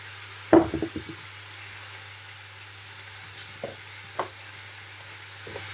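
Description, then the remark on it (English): Diced meat sizzles steadily in a pan but is not yet browning, a constant hiss, with a quick clatter of utensil knocks early on and a few lighter taps later. No one speaks. “And then I'm just listening to it now. It's sizzling, but it's not browning them yet, so I can just carry on with these carrots.”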